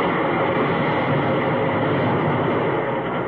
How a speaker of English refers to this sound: I see the train leaving right on the edge.